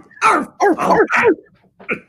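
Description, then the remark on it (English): A person imitates a dog barking with gruff, throaty voiced barks, four loud ones in quick succession followed by two shorter, quieter ones after a brief pause. “why are you barking at me?”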